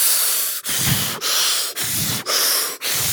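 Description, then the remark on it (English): A voice imitates exaggerated, dramatic breathing: a steady run of about five loud, hissy in-and-out breaths, each separated by a brief pause, with no talking. “And like, all the breathing.”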